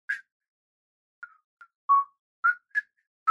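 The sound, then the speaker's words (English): A handful of short, bright whistle-like notes pop up one at a time with gaps between them, tracing a simple, sparse, calming children's tune. Clear, with no voices. “And there's like little whistles and like bike bells and like a child laughing.”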